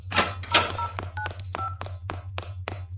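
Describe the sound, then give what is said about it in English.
Mobile phone keypad tones beep as someone dials a taxi at Jodrell, in a quick, uneven series of short two-note blips, mixed with sharp taps and clicks from the keys over a steady low electrical hum. “Phoning for a taxi so I can make an escape.”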